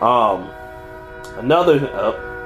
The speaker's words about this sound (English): Hold on, I'm going to let the train pass real quick. Alright, so I'm back. So, sorry about that. I live by a train, so, you know, whenever it goes off, gotta stop everything.